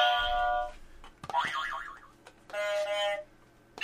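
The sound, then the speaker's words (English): Three novelty game buzzers sound one after another: a flat, bright electronic tone, then a warbling springy boing that wobbles in pitch, then another steady buzzy tone. All are fairly loud, with no talking. “Well, okay, I've given us buzzers. Do you want to? Shall we play with our buzzers?”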